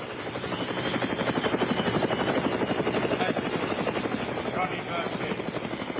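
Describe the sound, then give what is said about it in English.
A helicopter passes overhead, its rotor thumping in a steady rapid chop over a loud, constant engine roar that fills the whole stretch without pause. “Oh, man, here's the helicopter coming by.”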